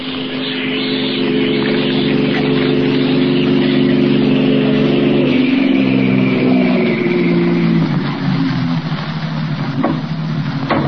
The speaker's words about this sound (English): Joe, a car coming up the street.